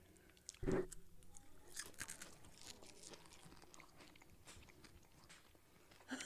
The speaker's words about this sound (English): No, it's just kind of like crunchy bite. It kind of just crunches.